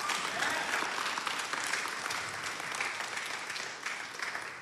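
Steady, dense applause from a sizable crowd fills the whole stretch, many hands clapping at once in a continuous wash of sound, fairly loud and even throughout.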